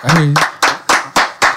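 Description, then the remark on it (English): A short round of applause for an R&B singer guest: about five loud, sharp hand claps in a fairly steady rhythm, following a brief voiced sound at the start. “Let's round of applause that shit, man. Round of applause.”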